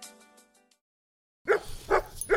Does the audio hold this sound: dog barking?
yes